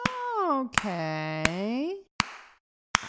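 Four slow, evenly spaced claps, each a sharp single smack about three-quarters of a second apart; the first two ring over a long, wavering hummed or sung tone that fades before the last claps.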